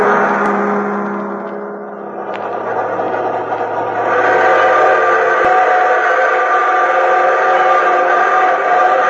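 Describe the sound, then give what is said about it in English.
A fast freight train with cattle cars and boxcars rolls through the night with a loud, steady roar and rattling clatter, a sustained whistle tone sounding over the din throughout, with no voices. “And a rambling and a rolling, loping through the night on a cattle car on a fast freight, bucking and bumping in a boxcar.”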